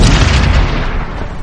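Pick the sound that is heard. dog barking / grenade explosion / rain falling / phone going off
grenade explosion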